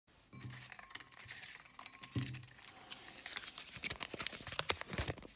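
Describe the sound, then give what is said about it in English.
Continuous crinkling and rustling of paper slips, each with a topic written on it, being rummaged through to choose one, with sharp crackly bursts and a few light clinks; no one speaks. “If you can hear them. A little ASMR action going on.”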